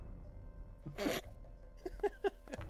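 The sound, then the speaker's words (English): A single sharp, breathy sneeze bursts out for the character Chisel, followed by a few short, clipped vocal sounds in quick succession, with no talking around it. “Chisel also maybe has to sneeze.”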